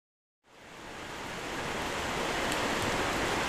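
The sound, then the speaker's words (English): A steady wash of rushing creek water in winter blends with rain pattering on a back porch, a dense hiss that swells in after a brief silence and holds even with no voices. “Just 30 minutes of the sound of rain on the porch with the white noise of the creek in winter.”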